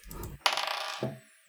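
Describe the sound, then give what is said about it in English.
Dice are rolled a second time, with advantage: a low rumble gives way to a sudden bright clatter of dice tumbling across a hard surface, rattling for most of a second before a brief final knock settles it. No voices. “And honestly, I'll let you roll with advantage for that since you are opening the door and initiating combat. So roll a second time.”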